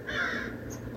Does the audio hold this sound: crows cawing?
yes